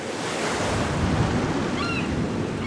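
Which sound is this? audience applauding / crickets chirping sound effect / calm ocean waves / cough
calm ocean waves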